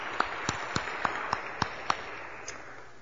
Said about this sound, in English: Thanks, boys and girls. Let's give them a round of applause, would you? Thank you.